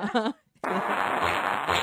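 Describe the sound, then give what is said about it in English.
A short voiced burst, a brief pause, then a loud, sustained, raspy fart sound effect that sputters and buzzes for over a second. “It's really a fart sound.”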